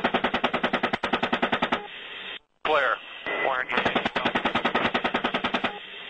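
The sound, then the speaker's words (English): Two long bursts of rapid, evenly spaced machine-gun fire from a US Apache helicopter gunning down 11 civilians and 2 children, thin and band-limited like a radio feed, with a brief garbled radio voice crackling between them; audio from the leaked US military video dubbed Collateral Murder. “That is some of the audio from the video dubbed Collateral Murder, documenting a US Apache helicopter gunning down 11 civilians and 2 children, including unarmed Reuters journalists and people who had stopped to pick up the bodies.”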